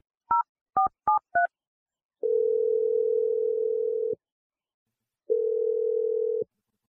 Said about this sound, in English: Let's just dial her phone number and see what she has to say. All right, here we go.